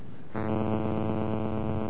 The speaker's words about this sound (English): It's buzzing.